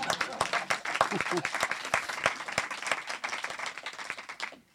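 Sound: audience clapping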